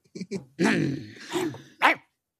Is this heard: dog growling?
yes